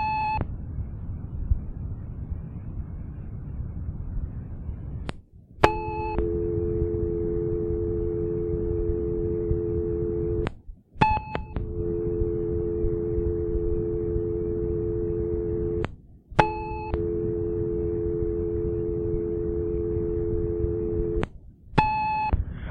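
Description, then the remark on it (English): Answering machine beeps after several calls where people hung up before leaving a message, a short burst of electronic tones roughly every five seconds, four times in all, with a low steady dial tone and line hiss droning in between. “So what you hear there are several calls where people hung up before they left a message.”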